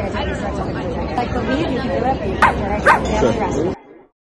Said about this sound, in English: I heard that. She gives her a couple barks like, turn fuck you, bitch.